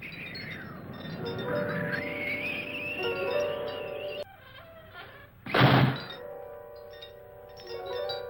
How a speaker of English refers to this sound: Who closed the door?